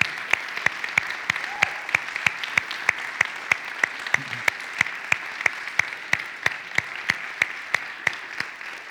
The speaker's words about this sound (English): I know you just sat down, but I think that's something that we can stand and clap about. Can y'all stand to your feet? Can we give God some praise? Come on.